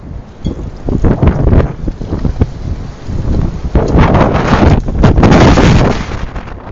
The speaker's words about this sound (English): And it should be mentioned that gusting winds here, so if there's any interruption in the khutbah, it's because of these winds that are moving us.